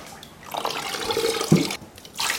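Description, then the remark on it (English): A tile sponge, used for tile and grout work, is dunked and swished in a bucket of water, producing continuous sloshing and trickling with a brief louder splash midway and a final swirl. No one speaks. “This is called a tile sponge. It's used for tile and grout work. That and a bucket of water.”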